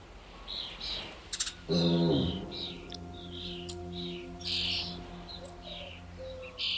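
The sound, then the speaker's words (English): Birds sing in a garden, a steady run of short, high chirps and tweets repeating throughout, joined early on by a loud, low buzzing drone that lingers faintly beneath the birdsong. “Birds and Bees”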